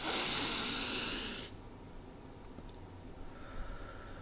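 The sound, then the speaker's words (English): A single long, breathy deep exhale blown into a microphone as ASMR, loud and airy for about a second and a half before dropping off to quiet room noise. “I'm breathing into the mic.”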